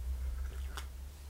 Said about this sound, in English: I'm just going to have a sip of tea.